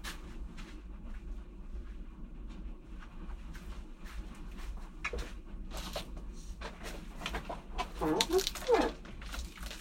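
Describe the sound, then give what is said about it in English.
Birds cluck and chatter steadily in short, overlapping calls over a low constant hum, growing a little louder and busier near the end. “Well, first, you'll have to listen to a very exciting P.S.A. after just a few more moments of bird sounds.”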